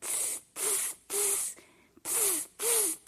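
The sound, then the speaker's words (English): Five rhythmic, breathy scraping strokes, evenly spaced, like a blade being sharpened; a voice imitates the sound with hissing swishes, each carrying a faint vocal whine, representing villagers sharpening their knives. “The villagers are sharpening their knives.”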